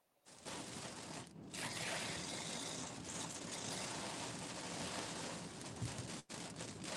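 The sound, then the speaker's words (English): Heavy rain pours down in a steady, dense roar that fills the whole recording, loud, with no voices and only a brief dip near the end. “Y'all, it is raining so bad. I hear it.”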